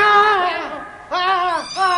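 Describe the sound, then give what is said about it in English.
A female cat yowls angrily as she launches herself at a man, a loud, strained, wavering cry that breaks off and then surges again in a second and third rising howl, with no talk around it. “The cat launched herself, not at Malcolm, but at the luckless custodian.”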